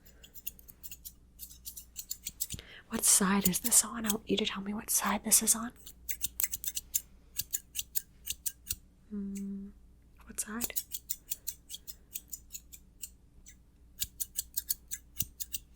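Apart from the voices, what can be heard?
scissors snipping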